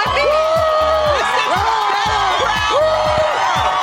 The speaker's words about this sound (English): And from the size and sound of this crowd, we're almost ready to officially declare rolling spring break underway. Man, look at this crowd.